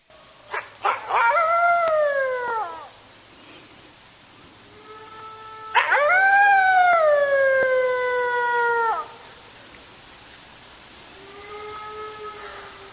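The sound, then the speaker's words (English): A red wolf at a wolf conservation center howls in long, wavering tones that rise and slowly fall, with two main drawn-out howls and softer, lower howling in between and at the end, heard clearly with no talking. “Let me just play you this beautiful clip of a red wolf vocalization.”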